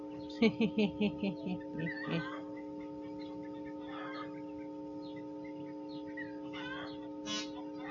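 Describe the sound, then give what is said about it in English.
Chickens cluck in a quick run of about six sharp calls, followed by scattered softer clucks and squawks over a steady, loud electrical buzz. “I better check on my birds.”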